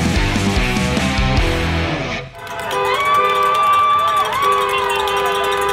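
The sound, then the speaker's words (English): A big crowd cheers and roars outdoors outside Bell MTS Place early in the morning, loud and sustained. The noise dips briefly partway through, then swells again with shrill whistles and horn-like tones rising over the din. “That's the sound outside Bell MTS Place early this morning.”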